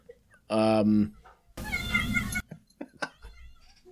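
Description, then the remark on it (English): A cat meows loudly twice, a short bright cry followed by a longer, harsher yowl. Softer, muffled voices can be heard briefly afterward. “I want you to bump that in post so you can hear that poor cat scream.”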